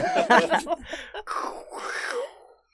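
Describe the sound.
A person mimics the snoring of a man who fell asleep while watching a film, with a few drawn-out, throaty groaning breaths, loud, the last one a long rasping drone that fades out.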